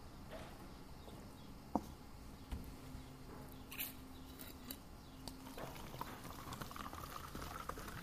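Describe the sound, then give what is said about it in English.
A person pours their water steadily with a soft, bubbling rush, punctuated by occasional small clinks and splashes. It is fairly quiet, and no one speaks. “You can think about that while I'm pouring my water.”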